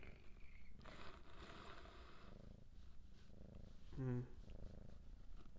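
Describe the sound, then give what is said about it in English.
A cat purrs steadily, a continuous low rumbling that runs the whole time, with a brief higher tonal sound breaking in near the end. “Oh, yeah, the purring.”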